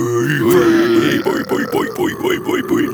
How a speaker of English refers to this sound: It is tradition here on Into the Pitcast for our guests to give their best metal scream. So let's fucking hear it, boys. Who wants to go first?